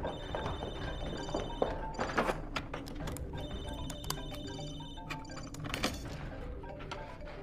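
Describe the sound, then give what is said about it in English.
Several telephones ring at once, their shrill overlapping trills repeating steadily over a busy backdrop of clicks and clatter, with no one speaking. “Yeah, all the phones.”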